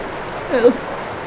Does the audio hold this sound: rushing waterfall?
yes